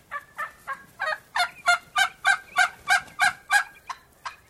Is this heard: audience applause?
no